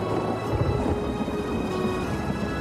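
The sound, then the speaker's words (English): Steady rain pours down beneath a deep, rolling rumble of thunder that swells in the low end, with no voices, just the continuous wash of a storm. “Lightning never strikes the same place twice.”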